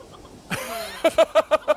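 Rasta the Rooster crows: a sudden rising, strained call that breaks into five quick, evenly spaced clipped bursts at the end, loud and alone with no talking.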